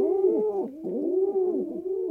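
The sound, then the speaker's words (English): Low, throaty pigeon cooing rolls on steadily in soft, swelling phrases, each coo rising and falling in a gentle repeating rhythm, moderately loud with no voices present. “From the pigeon's perspective, we humans live in the slow lane.”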